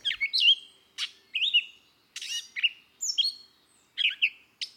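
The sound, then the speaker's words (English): A female grey catbird sings loudly and at length, pouring out a jumbled run of varied chirps, squeaky whistles and short warbled phrases with only brief pauses between bursts, alone. “If you are listening for the note of another bird, she is sure to be prompted to the most loud and protracted singing.”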